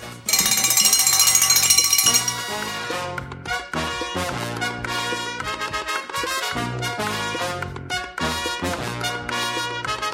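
A bright pre-lap bell clangs loudly and rapidly for about two seconds, then gives way to rhythmic, tonal music that carries on steadily without any voices.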